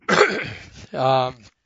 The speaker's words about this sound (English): Sorry about that. This the season to be coughing.